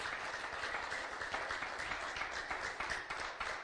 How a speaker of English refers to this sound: All right. Give God a hand clap of praise for that.